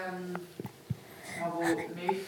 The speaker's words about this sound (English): You get the hiccups. Oh. It's okay.